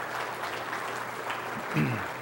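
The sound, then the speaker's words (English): An audience applauds steadily after an update on the Caring and Sharing debt challenge, a dense patter of many hands clapping at moderate volume throughout, with a brief voice rising faintly near the end. “And you can clap, that's okay.”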